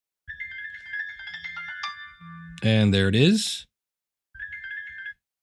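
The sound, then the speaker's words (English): A phone's electronic ringtone chimes in a bright melodic pattern for an incoming automated verification call from an Alexa skill. It breaks off as a voice speaks loudly, then starts ringing again briefly at the end. “Okay, I've sent a verification call to that number.”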